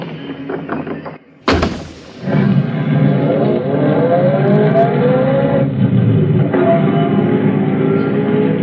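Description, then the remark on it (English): A car door thunks shut on a street, then the engine starts and revs up, its steady drone rising in pitch as the car pulls away and drives on, loud throughout. “Well, that's my car.”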